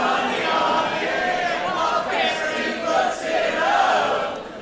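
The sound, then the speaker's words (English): A crowd of many voices, an audience, sings a song together in a loose, ragged chorus, loud and steady throughout, with nobody conducting them. “That one's not great with the crowd singing.”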